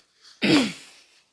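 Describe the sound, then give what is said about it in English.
A single throat clearing from someone with a sore throat: a soft intake of breath, then an abrupt, loud, raspy burst with a low gravelly rumble that trails off over about a second. No talking. “Sorry that I keep on clearing my throat.”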